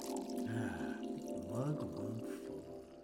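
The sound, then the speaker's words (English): Wine pours into a glass in a continuous gurgling stream with a faint rising tone, heard over a steady low droning hum for about three seconds. “Oh, Mr. Cosby, yes, I will have a glass of wine.”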